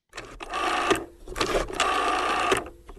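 A rotary phone dial whirring back after being turned, two steady mechanical buzzing runs of about a second each with a short pause between them and a thin ringing tone through them.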